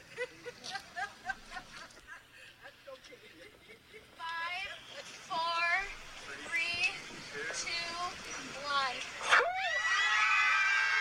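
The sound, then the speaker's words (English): A crowd of protesters standing on a snowy street in Canada screams and wails together outdoors, a loud, sustained, overlapping din that swells after a few seconds of quieter, scattered voices and holds to the end. “They're just standing out on a street, a snowy street, just screaming.”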